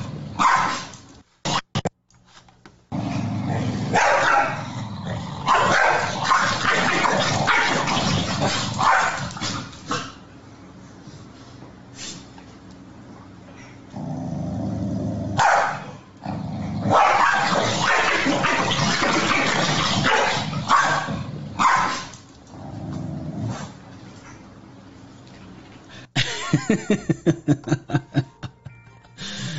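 Dogs snarl, growl and bark furiously in a loud scuffle, with brief lulls between frantic bursts and a quick string of sharp barks near the end.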